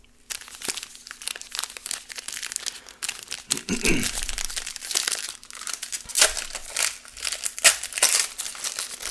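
Dense, continuous crinkling of a foil 2023 Donruss trading card pack wrapper being ripped open, fairly loud, with sharp crackles and brief tearing bursts throughout and no one speaking.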